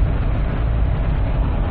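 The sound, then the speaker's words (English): Steady, loud low rumble of road and engine noise from a car driving on Andrew Johnson Highway, continuous and even throughout with no distinct pass-bys standing out, and no voices. “I'm in my car by myself.”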